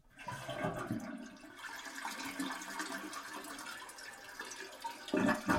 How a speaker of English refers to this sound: So the flush handle has been used once. And it actually flushed.